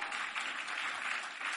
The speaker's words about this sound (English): I like the way you are clapping. Clap a little more.